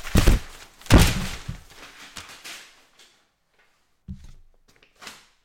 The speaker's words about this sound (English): And because their constitutional close meant a couple of these bad bills died, well, I'm feeling like celebrating with a paper toss as well.